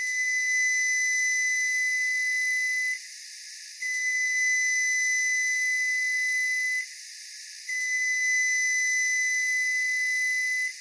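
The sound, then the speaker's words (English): Three long, steady electronic beeps from a newer-model Frigidaire microwave oven, evenly spaced with short gaps between them, loud with no voices. “Here are the three long beeps of a newer model Frigidaire microwave.”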